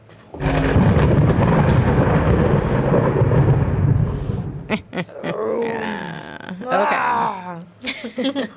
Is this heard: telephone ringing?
no